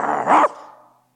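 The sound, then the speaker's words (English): A person's voice briefly imitates a dog's growl, a loud, rough snarl that swells for about half a second and then trails off into a fading tail. “You can't be growling all the time.”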